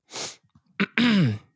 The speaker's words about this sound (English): There's the sniff. We know the sniff well.